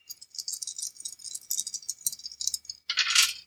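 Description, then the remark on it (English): Dice being re-rolled rattle and click together in a cupped hand for a few seconds, then spill out in a louder, dense clatter at the end, with no voices. “All right, do you want to use those two nudges to re-roll the rest of your dice?”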